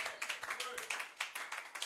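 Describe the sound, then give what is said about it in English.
An audience claps together as a clap offering to the Lord, a dense, steady burst of many hands, the rapid overlapping claps forming a continuous crackling rhythm, with voices mixed in beneath. “Wherever you are, also give the Lord a mighty clap offering.”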